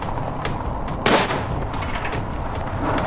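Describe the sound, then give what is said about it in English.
A single sharp gunshot cracks out about a second in, striking a truck and shattering its driver's side window, loud and abrupt above a steady, rough rumble of engine noise that continues throughout. “Someone shot at the truck, shattering the driver's side window.”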